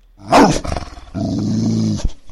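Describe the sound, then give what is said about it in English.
A pack of large wolfhounds snarls in a sharp, loud burst, then settles into a sustained, rumbling growl that holds for about a second before cutting off, with no talking. “But Durak silenced them all with a look before seemingly addressing the whole pack of dogs.”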